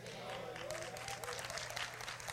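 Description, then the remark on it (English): Scattered applause from about half of an audience, a loose patter of hand claps with no clear rhythm, fairly light and lasting a couple of seconds. “Only half of you clapping?”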